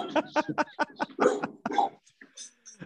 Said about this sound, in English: That sounds like a big dog too. Is that a big dog? Medium dog, big bark.